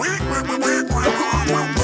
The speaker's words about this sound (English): Quack, quack, quack, quack, quack, quack. Wait a minute. Okay. Where did all those ducks come into the studio from?